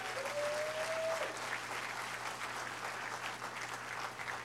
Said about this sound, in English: We had so many people putting in time 2 months before VBS actually happened, and then serving all week long. So please give them a big round of applause.